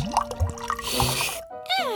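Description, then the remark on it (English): Fresh water is poured for a pet kangaroo, pouring and splashing for a couple of seconds with gurgling, dripping sounds, then stopping abruptly, followed by a brief higher-pitched tone. “First, I'll provide you with fresh water.”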